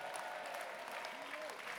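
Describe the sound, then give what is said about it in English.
An audience claps in a dense, steady wash of applause that holds evenly throughout, with faint voices and a few wavering tones audible beneath the clapping. “And God use your clapping and singing the house right now.”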